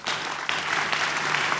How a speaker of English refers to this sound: You're clapping. You're clapping. You're clapping. You're clapping. You're clapping and singing.